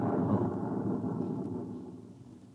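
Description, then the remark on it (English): A deep, muffled rumble from a generator motor blowing up about 3 miles away rolls through 15 feet of concrete, heavy in the low end and steady at first before slowly fading away. No voices are heard. “You see, sir, it takes a while for the vibrations of an explosion to travel 3 miles and then reach through 15 feet of concrete.”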